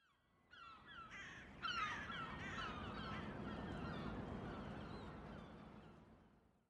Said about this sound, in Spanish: Y no solo eso, pues también escucho las gaviotas que sobrevuelan la costa, de un extremo al otro, más atraídas por la actividad humana que cualquier otra cuestión.